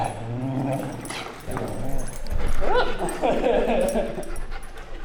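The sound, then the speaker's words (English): Several dogs, big and small fluffy ones, whimper and yip, with short high-pitched whines rising and falling over a busy background, and a person talking faintly underneath. “Could I go in there and get some dog sounds?”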